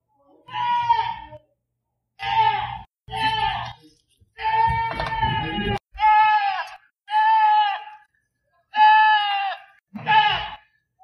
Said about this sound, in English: Okay, so that was not a human yelling for help. It was a goat. Just standing right outside my house, screaming forever. For what reason? I don't know. And like I've been here now for 10 months and I can tell you they do this quite often